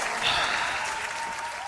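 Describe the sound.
A breathy, hissing rush blown close into a microphone, imitating a cheering crowd, steady and fairly loud for under two seconds with no clear words.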